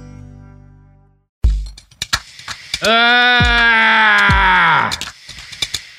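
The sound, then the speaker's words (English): A single loud, drawn-out yell holds a steady, strained pitch for about two seconds before trailing off, with sharp clicks and soft thumps scattered before and after it. “Cut me blowing my nose, but keep the yell.”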